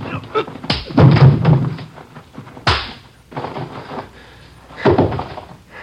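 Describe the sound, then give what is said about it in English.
Three heavy, dull thumps of blows from a police officer landing on an armed robbery suspect's body during an arrest, spaced a couple of seconds apart, with muffled scuffling and a brief low grunt between them. “I didn't think I hit him that hard.”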